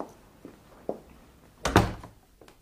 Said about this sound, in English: I knew it was you as soon as I heard your footsteps. I'm something of a detective myself, you see.